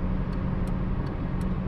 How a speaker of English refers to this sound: Also, my blinker is on.